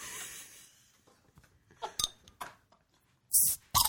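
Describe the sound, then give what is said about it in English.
A metal cap twisted open on a glass bottle: faint scrapes and a few sharp metallic clicks, then a loud brief hiss of released pressure and one more crisp click. “The metal on the glass.”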